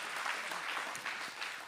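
An audience claps steadily, a dense crackle of many hands at moderate volume that holds even throughout, with no voices over it.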